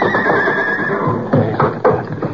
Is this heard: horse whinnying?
yes